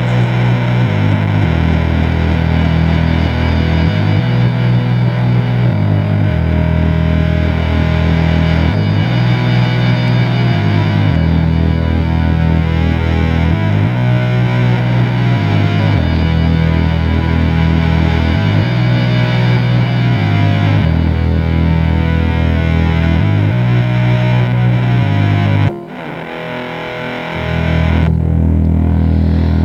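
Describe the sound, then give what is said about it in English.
A distorted guitar plays low, ominous bass notes over and over at the opening of a track, imitating a foghorn sound, in a steady, plodding pattern, loud and dense, with a brief dropout near the end before the riff resumes. “The funny thing about this track opens with like a very ominous like bass notes just played over and over again”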